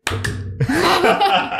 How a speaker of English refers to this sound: I've just realized that I have not made a mark on the cameras to sync the audio up. So, I'm going to clap now and we're all going to do this together.